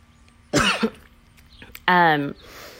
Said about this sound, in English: I don't know about you, but I tensed up when I heard that cough. I mean, she's just clearing her throat,